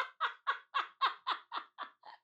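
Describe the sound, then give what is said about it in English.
A voice imitates a crow in the manner of Moira Rose as the crow lady from Schitt's Creek, letting out about nine harsh, raspy caws in a quick steady rhythm, loud, trailing off slightly softer at the end. “Is that Moira as the crow lady?”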